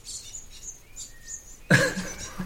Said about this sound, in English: Little baby birds here. No, they're little finches or something. Oh, look at that. I think they might be blue tits, maybe. Blue tits, yeah, there we go.